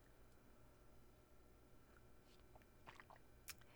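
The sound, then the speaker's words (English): Someone quietly sips water from a small Tervis cup with a goldfish design, with a few soft slurps and wet mouth sounds clustered near the end over a low background hum. “let me have a sip of my water here”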